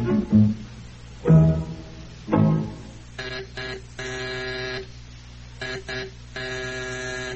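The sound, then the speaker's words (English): A house intercom buzzer sounds in a series of harsh, steady buzzes, some short and some held longer, after a few dull low thumps at the start. No one speaks. “Are you buzzing for me by any chance?”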